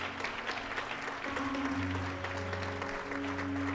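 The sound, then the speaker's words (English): A church audience claps in praise of God in a steady, dense burst of applause, while sustained low organ or keyboard tones hold underneath throughout. “Clap like he's been good to you.”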